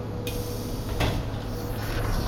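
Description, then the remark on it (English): The doors of an uptown Q subway train slide shut with a brief clunk and a louder thud, set against a steady, rumbling background of station noise. “Stand clear of the closing doors.”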